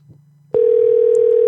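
After a brief low hum, a loud, steady telephone tone sounds through the earpiece and holds unbroken to the end, a call to Popeye's ringing out unanswered on the line.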